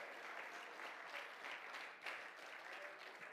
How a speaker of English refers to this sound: Can you clap your hands one more time unto the Lord?